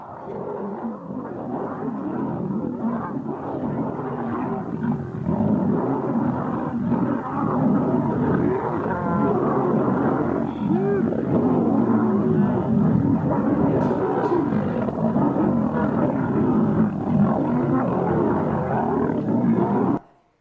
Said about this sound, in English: But I wanted to show you what a roaring lion looks like, and this was one of the only clips that I could find. It's found in Kenya, a group of tourists that recorded this fight.